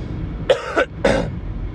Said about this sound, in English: excuse my cough. I have a nasty cough.